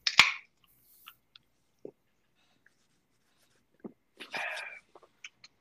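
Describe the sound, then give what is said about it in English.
A sharp crack and short hiss as a can of Blue, a wheat ale with blueberries, is opened, followed by quiet gaps, small clicks and soft slurping sips, with no talking. “So y'all are going to hear the nice little crack, and I'm going to take a quick little two sipper.”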